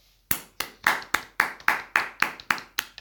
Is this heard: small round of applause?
yes